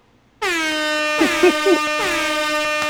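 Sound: air horn sound effect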